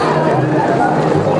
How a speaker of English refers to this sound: In front of us, and she's sort of hosting a cheering competition between the different sides of the road to see who can cheer the loudest.